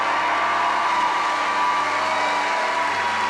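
An audience applauds in a dense, steady wash of clapping that holds at an even, loud level for a few seconds, with no voices speaking over it.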